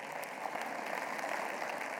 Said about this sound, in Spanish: De un aplauso al Señor si se lo va a dar.